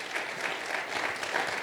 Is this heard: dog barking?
no